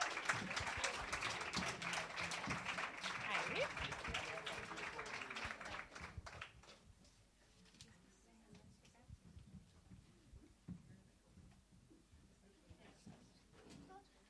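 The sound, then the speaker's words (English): An audience applauds everyone involved in a Solidarity Economies track as teams come up, for about six seconds, dense and fairly loud, then the clapping drops away to scattered claps, shuffling and quiet murmuring. “Can we have Team 11 and Team 12 up here and give everybody who was involved in this track a great applause?”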